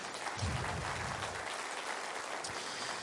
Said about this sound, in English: Can we give him a round of applause, too?